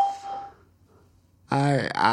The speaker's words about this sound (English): Hello, welcome to Skype Core Testing Service. After the beep, please record a message. Afterwards, your message will be played back to you.